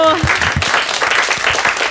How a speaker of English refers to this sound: Wow. Another round of applause for self-care and taking time to love yourself.